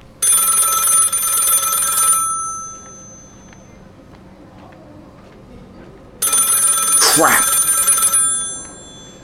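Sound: telephone bell ringing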